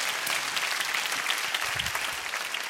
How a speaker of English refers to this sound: Come on, clap your hands if you believe that.